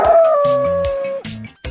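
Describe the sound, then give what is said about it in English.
A dog lets out one long, sustained, loud howl, while several short, sharp barks break in around it and continue after it fades. No one speaks. “You answered dog-sit a dog that won't stop barking.”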